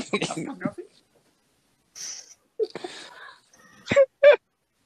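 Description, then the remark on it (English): A voice imitates seagull squawks: a jumble of nasal, honking cries, then two sharp, loud squawks close together at the end, with brief breathy sounds in between. “Isn't like the birds from Nemo?”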